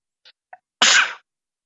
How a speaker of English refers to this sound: yeah, I sneeze, sorry.